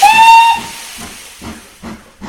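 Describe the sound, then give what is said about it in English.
A steam train whistle shrieks loudly for about half a second with a bright, steady tone, then fades into hissing steam and a slow series of rhythmic chuffs as the train starts with a rattling lurch and pulls away from a station platform. “The rest of the parting was lost in a whisper and in the rattling lurch of the starting train. "You're sure to come," she spoke as the train moved. "Nothing shall keep me," he answered, and we steamed out.”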